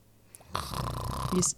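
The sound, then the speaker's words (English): A person gives one drawn-out, raspy snore, loud, with a rattling throaty texture that builds and holds for about a second before cutting off. “You're just snoring.”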